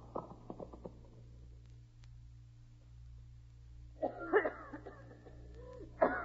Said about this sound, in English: There now, honey. Try to stop coughing.